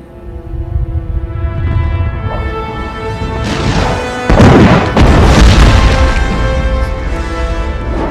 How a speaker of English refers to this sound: Yoda just summoned lightning. So Luke was hesitating, and Yoda summoned lightning from the sky to destroy the temple. So here we go. Sets it ablaze.